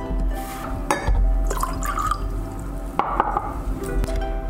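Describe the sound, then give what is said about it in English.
Hot milk is poured over butter, sugar and salt in a bowl in a steady stream, with light splashing and a few faint clinks against the dish. “Then once you've heated up your milk, let's pour it over the butter.”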